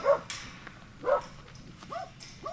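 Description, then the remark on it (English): A kelpie dog gives four short, sharp barks spaced unevenly over a couple of seconds, moderately loud, with a faint outdoor hiss behind and no one talking, on a farm. “How about a kelpie at your heels?”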